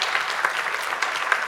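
An audience at a live show presented by Comedy Republic claps steadily for a guest, a dense wash of many hands with crisp, bright slaps and small peaks, sustained at an even moderate level with no voices.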